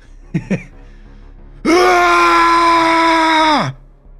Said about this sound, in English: All of my courage leaves me. I scream.